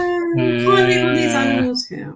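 A single drawn-out dog yelp from the other side of a room, loud, holding a steady whining pitch for over a second before cutting off, followed by a short breathy rasp.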